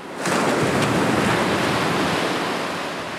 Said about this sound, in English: I want to start today's episode at the ocean. My gosh, whenever I look at the waves, I can't help but marvel at their power, the sheer amount of energy they have.